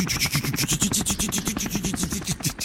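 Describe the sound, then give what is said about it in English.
A traffic-report helicopter sound effect, 'The Spy in the Sky': fast, steady rotor chopping with a constant engine whine underneath, loud and unbroken for a few seconds with no voices. “The Spy in the Sky.”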